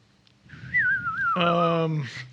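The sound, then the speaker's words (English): Someone vocally imitates the sound of a game ability called Shatter, pictured as glass breaking: a wavering, high whistle slides downward, joins a buzzy voiced tone, then ends in a short, breathy burst of noise. “I just picture it as like glass breaking.”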